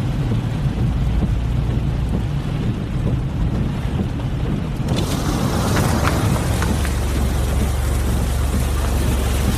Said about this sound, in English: Could you turn your engine off, please?